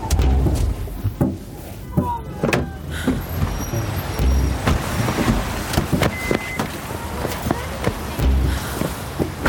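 A car rumbles as it pulls over and comes to a stop, low engine and road noise steady throughout, punctuated by several sharp clunks and rattles.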